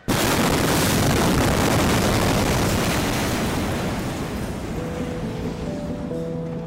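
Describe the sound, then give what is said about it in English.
A massive explosion in Beirut, Lebanon, on August 4th hits suddenly and loudly, then rolls into a long, dense roaring rumble that fades only slightly, with faint steady tones emerging near the end. No one speaks. “I went to Beirut, Lebanon, after a massive explosion rocked the capital on August 4th.”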